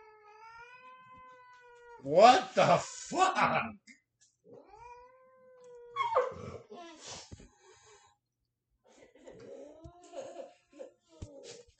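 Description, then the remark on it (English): A cat caterwauls aggressively, long wavering yowls broken by harsh, loud hissing bursts, repeating in several bouts with brief pauses; a person briefly exclaims partway through. “That's one mean pussy. Fucking cat hates.”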